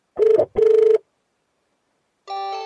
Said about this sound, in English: Call. Dialing. Okay, it's dialing. So my home phone should start ringing very soon.